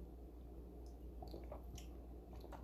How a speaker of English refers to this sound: I'm gonna take a sip of my Paloma.